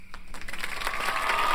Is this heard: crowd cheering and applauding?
yes